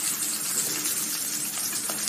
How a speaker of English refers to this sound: We interrupt this podcast to listen to Bacon Sizzle.